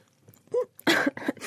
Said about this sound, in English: Choking on some icing sugar.